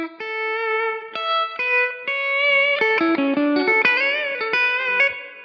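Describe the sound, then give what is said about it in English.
An electric guitar played alone through a Holy Grail reverb pedal, with sustained ringing notes at first, then a busier run of overlapping notes that blur into a wash of echoing tail. “Yeah, and then the Holy Grail. The Holy Max. Grail. Yeah, just a reverb.”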